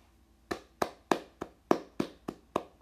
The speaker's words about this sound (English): I'm a clap for myself. I'm proud of myself.